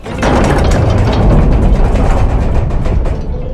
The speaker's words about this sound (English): Okay, door's heavy. Jeez, wow.